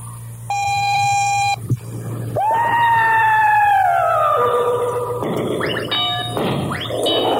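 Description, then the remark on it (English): A radio station's automatic time-signal tone marking 6 o'clock, Biscayne Federal time: a loud, steady electronic beep, then a long, gently falling synthetic tone and another bright sustained beep, all over a low constant hum with no talking. “At the automatic tone, 6 o'clock, Biscayne Federal time.”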